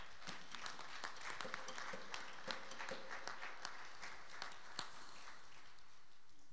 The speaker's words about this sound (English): But we'd like to welcome y'all home. Just can we get a round of applause for our guests today?